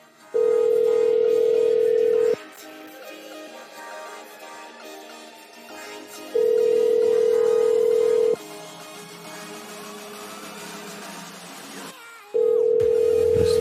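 An outgoing phone call's ringing tone: a steady, loud electronic tone sounds for about two seconds, then pauses for four, repeating three times over faint background noise.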